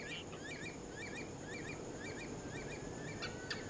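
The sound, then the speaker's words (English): A curlew calls at night, a faint series of short whistled phrases repeating in a steady rhythm over a constant high-pitched drone and soft background hiss. “Oh, there's the curlew again.”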